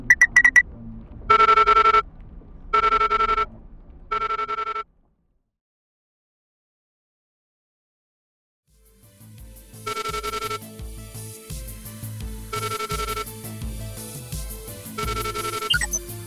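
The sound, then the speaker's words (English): A phone rings through a desk speakerphone in three short electronic bursts, falls silent for several seconds, then resumes with fuller, repeating ring tones layered over a low hum. No one speaks. “I didn't recognize the number you called in on.”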